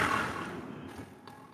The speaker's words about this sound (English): Can you hear me? Yeah, I can hear you. It's very windy.